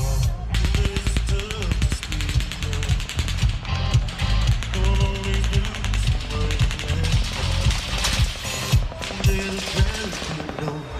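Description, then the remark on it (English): Rapid automatic gunfire rattles in long, sustained bursts, a loud, dense stream of sharp cracks with steady low tones running underneath. “Machine gun fire, possibly from an automatic weapon, erupting into a crowd of thousands of fans.”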